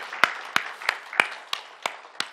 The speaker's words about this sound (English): Okay, we're clapping for them.